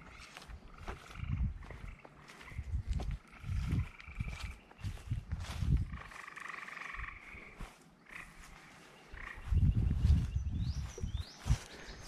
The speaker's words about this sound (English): Frogs, listen to them.